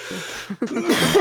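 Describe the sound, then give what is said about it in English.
A single cough that rolls into a throaty burp, one short rough burst of air and croaky low sound, fairly loud and alone with no talking. “I had like a combination cough burp.”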